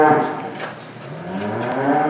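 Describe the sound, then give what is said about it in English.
Several dairy cows moo in overlapping, drawn-out calls, loud, with a continuous low bellowing that rises and falls over a couple of seconds, on a dairy farm in the San Joaquin Valley, central California. No one speaks. “He owns 1,800 cows.”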